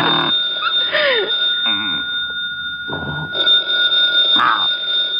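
An old-fashioned telephone bell rings loudly, a metallic trill that comes in bursts with a short pause between them, over a faint background murmur.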